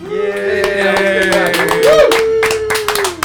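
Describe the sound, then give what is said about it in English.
People standing clap in a quick, irregular patter of applause, steady for a few seconds, mixed with a sustained, wavering tonal sound running underneath. “We're standing and applauding.”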